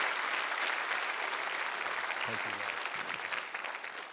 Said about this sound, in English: Give them another hand clap.